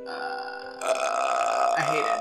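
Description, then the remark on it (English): A person imitates the creepy croak of the ghost from the horror film The Grudge: a steady throaty drone that breaks into a loud, raspy, rattling gurgle, sustained for about two seconds with no talking. “The creepy noise that...”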